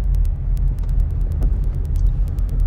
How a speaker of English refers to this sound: Excuse me. I'm about to embark on this nice traffic, and oh, look, an accident.